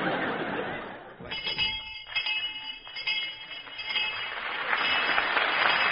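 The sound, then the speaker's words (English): A bright, high-pitched bell rings in about four steady strokes, each tone lingering, over a loud hissing, murmuring background that swells again at the end. “Well, there's the bell, kid.”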